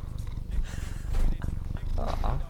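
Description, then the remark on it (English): A domestic cat, Vincent Kennedy McCat the first, purrs in a dining room, a steady low rumbling vibration that continues throughout with a rhythmic pulsing texture, and a brief voice-like sound rises over it near the end. “He's really purring.”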